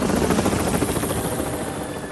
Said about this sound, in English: Down in the mine, Thomas could hear Harold the helicopter getting closer.